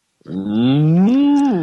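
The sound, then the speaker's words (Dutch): A single cow moos once, a long, loud low with a rising then falling pitch, lasting over a second on its own with no talking. “Ik weet niet wat dat ik hoorde precies loeien.”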